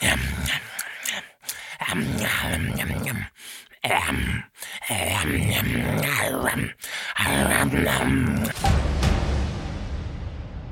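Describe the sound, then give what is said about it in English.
A voice imitates a wolf licking its chops, with wet, smacking slurps mixed with low growls and grunts. The noises run loudly for several seconds with a few brief pauses, then stop abruptly. “And I just want to state for the record that he continued licking his chops like that for a very, very long time.”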